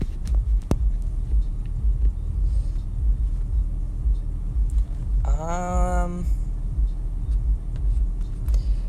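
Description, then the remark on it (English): Loud, deep bass music blasted from a nearby car at a Lowe's throbs and rumbles steadily through the whole stretch, making the listener's car vibrate, with a brief higher tonal whine partway through. “Why is that guy blasting his music so loud? Pretty sure you guys heard that. Bro, it's vibrating the car.”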